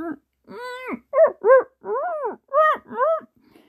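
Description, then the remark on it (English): A dog named Dex whines while looking out a window, a run of about seven high, tonal cries that rise and fall in pitch, some brief and some drawn out, fairly loud with no voices. “He kept looking out the window, whining.”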